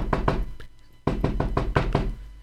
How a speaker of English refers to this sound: And sure enough, he went to the Rabbi's house and he knocked on the door.